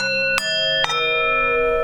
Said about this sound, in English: Before our duo can decide what to do with the information they have discovered, the recall chimes sound and the doctor comes home.